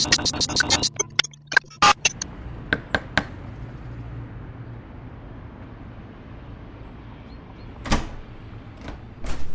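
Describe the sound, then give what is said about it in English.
A door is unlatched and opened: a quick cluster of sharp clicks and rattles from the handle and lock, then a low room hum with a couple of softer knocks near the end. “Sorry I took a while coming to the door.”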